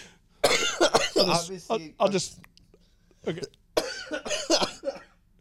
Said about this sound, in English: I'll just try to spare the people from your coughing a little bit.